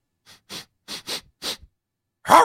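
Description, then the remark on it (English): A voice imitates a dog sniffing a crumpled piece of paper held out to it: five quick, breathy sniffs in an uneven rhythm, followed by a louder, voiced huff at the end. Fairly quiet, with no talking. “The dog sniffs the paths.”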